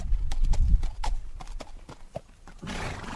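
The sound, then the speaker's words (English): Horses' hooves clip-clop in an uneven walking rhythm, several sharp knocks over a low rumbling background, with a breathy rush of noise near the end, as young students lead their horses back to their stalls after class at Miguel Reverte's riding school and stables outside Barcelona. “At Miguel Reverte's riding school and stables outside Barcelona, young students lead their horses back to their stalls after class.”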